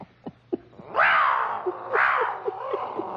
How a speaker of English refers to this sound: Why'd you get a small cat like everybody else has? No, you got to get one bigger than the rest. Bigger noise, too.